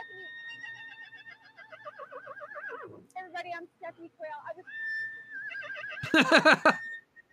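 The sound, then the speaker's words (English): A horse whinnies with long, quavering, high-pitched calls, then a brief pause and a sudden loud, shrill neigh near the end. “we had Tara Reid earlier and her horses. And I have a feeling if she ever tries to do videos with them, it'll be very similar to this”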